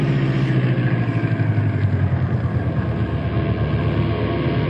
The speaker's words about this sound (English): And there goes the plane, with Richard at the controls.